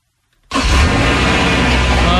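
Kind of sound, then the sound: vehicle, car engine starting up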